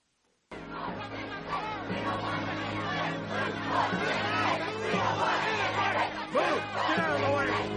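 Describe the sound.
A loud, hostile crowd shouts and jeers all at once, many voices overlapping into a continuous roar of yelling and screaming that starts abruptly after a brief silence and never lets up. It is a film reenactment of people threatening and screaming at a primary school girl as agents walk her into class.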